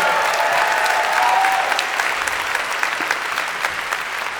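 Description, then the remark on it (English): An audience applauds a band, a dense wash of many hands that holds loud and even before thinning slightly toward the end, with a faint cheer or whistle rising early on. “Another round of applause for the ….”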